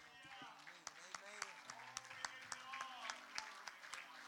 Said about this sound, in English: And so now I'd like to thank you again for joining us for a message from the pulpit of Hatchbend Apostolic Church. Let's give the Lord a big cheer in the house.